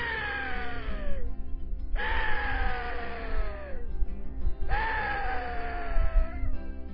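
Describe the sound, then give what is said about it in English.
Three long, shrill axis deer calls made by a person calling axis deer on the radio, each a loud, wavering cry sliding downward in pitch, with short pauses between them and a low rumble underneath throughout. “I also want you to call some axis deer on the radio, okay?”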